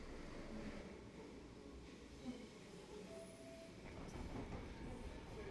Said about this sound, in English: We're on a very noisy Merseyrail train on its way to Egbeth, which is a suburb of Liverpool